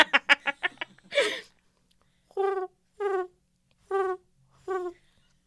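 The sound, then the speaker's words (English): A person imitates a bird call: a few quick clicking sounds and a breathy burst, then four short, warbling calls spaced evenly about a second apart. “So this is the bird call.”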